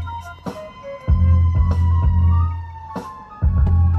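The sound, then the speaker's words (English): An emergency siren holds a steady, thin tone over the heavy rumble of a vehicle's engine and road noise, with a few sharp knocks and thumps. No one speaks. “Yep, hear the siren, so we gotta pull over.”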